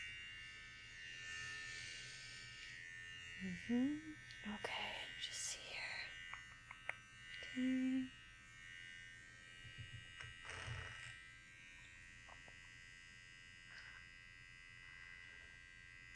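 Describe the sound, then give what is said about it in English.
Electric hair clippers buzz steadily throughout with a constant low, droning hum during a haircut on the sides and back of the neck, while a soft whispering voice murmurs over it and a few brief handling sounds break in. “to do next is just give you a little bit of a buzz just on the sides a little bit and the back of your neck, okay?”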